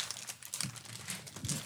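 Crinkling of a green plastic wrapper of a chocolate mint, the kind given at Olive Garden, being pulled open, a steady run of sharp crackles and rustles with a couple of louder crunchy bursts, no voices.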